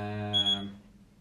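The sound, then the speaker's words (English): A short electronic tone from a device disconnecting its Bluetooth connection, a bright harmonic-rich buzz with a higher pitched chirp layered in the middle, lasting about half a second before cutting off into quiet hiss. “I think that's it disconnecting again.”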